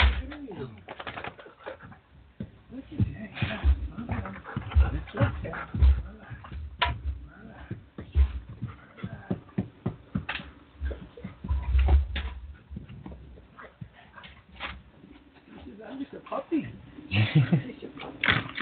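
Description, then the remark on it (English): A dog, a big puppy, digs and scratches at couch cushions, nosing into the corner of the couch, with repeated rustling scrapes and soft low thumps in an uneven rhythm, while a person speaks now and then. “You can't dig on the couch. You're not going to get anywhere.”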